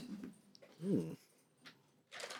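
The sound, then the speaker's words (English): A dog lets out a single short whining yelp, fairly soft, surrounded by quiet rustling and breathy noises, with a brief hiss of movement at the end. “I'm having attack by my dog here.”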